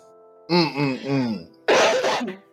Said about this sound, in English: Look at her coughing. Look at her. She can't even hold it back.